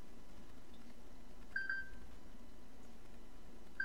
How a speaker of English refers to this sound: Where's it coming from? Oh. Oh. It's your phone. Why is my phone going off? Something happening? It was find my phone. It went off. That was weird. I don't really need to find it.